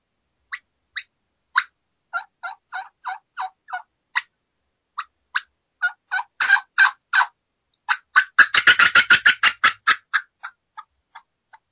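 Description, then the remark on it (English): An imitated turkey hen fly-down cackle made on a call to show an excited hen: a run of sharp, irregular clucks that speeds into a dense, excited burst before trailing off into a few spaced notes, fairly loud. “So we'll show excitement with a fly down cackle.”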